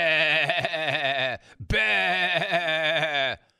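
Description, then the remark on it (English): A goat bleating sound effect plays twice in loud, drawn-out cries with a shaky, wavering tone, separated by a brief gap, with no talking around it. “The GOAT. We don't do GOAT talk.”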